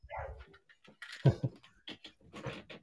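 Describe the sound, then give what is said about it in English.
A dog barks excitedly because someone is at the front door, in a quick, irregular string of sharp barks mixed with higher yips and whines, moderately loud, with no one talking. “Somebody is at my front door and my dog is barking like crazy.”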